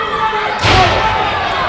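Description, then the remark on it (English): A single heavy punch-like smack lands sharply as two wrestlers trade punches in the middle of the ring, over a steady wash of loud crowd noise that continues before and after the impact. “Both men in the middle of the ring just trading punches.”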